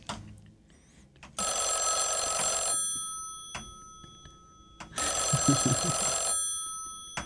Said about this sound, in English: Oh, our phones are ringing. Dare we answer this phone call on a podcast?